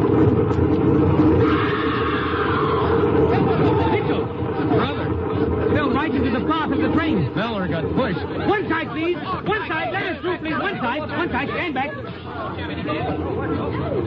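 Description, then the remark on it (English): Dense crowd chatter on a train platform, many overlapping voices forming a steady, loud babble over a low rumble for the whole stretch, with no single voice standing out. “Hey, look, that crowd over on the platform.”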